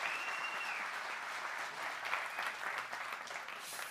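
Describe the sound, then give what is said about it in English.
A large audience at Grace Point applauds steadily one morning to welcome the online community, dense clapping at a strong, even level for several seconds with no voices standing out. “Can we all welcome, just with a raucous round of applause, our online community who are with us this morning?”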